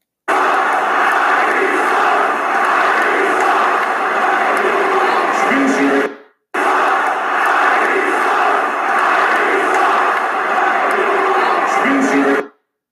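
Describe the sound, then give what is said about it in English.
The Boston crowd at the Garden, at a Brooklyn Nets versus Boston Celtics basketball game, chants together about Kyrie in a loud, dense roar of many voices, played twice in a row in two bursts of about six seconds each. “let's see what the Boston crowd kind of said about that.”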